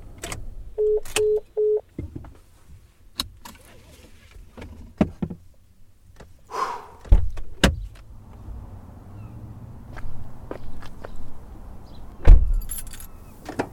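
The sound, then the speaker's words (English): A woman climbs out of her white truck: three short chime beeps, jingling keys, scattered clicks and shuffling, then a solid door thump near the end, with no talking. “gets out of her white truck and stands next to it.”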